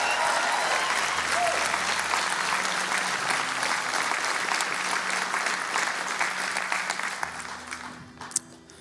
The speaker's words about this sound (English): I want you to give a round of applause and to cheer for all of the people right now. I want to hear that from you as a church.